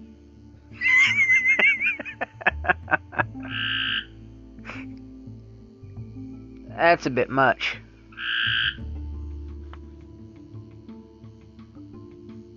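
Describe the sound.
Frogs croak loudly in repeated bursts, some rapid pulsing trills and some honking calls, over a low steady night hum, with a brief spoken remark near the start.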